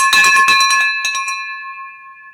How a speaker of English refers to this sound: Hold on. We're going to do a little victory bell. Get ready for this because that is like huge profits.